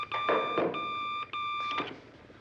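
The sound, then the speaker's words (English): The bat phone hotline rings in the Batcave with a bright, warbling electronic tone in three quick bursts separated by brief gaps. It is fairly loud, with no voices. “In a few seconds, the bat phone will be flashing.”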